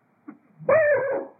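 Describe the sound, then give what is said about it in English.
A person imitates a dog, giving a short low yip followed by a sustained, harmonic whining bark-like howl that tapers off; a single vocal imitation, close and fairly loud, with no other talking. “So in this way, as a dog, I'm still protecting them.”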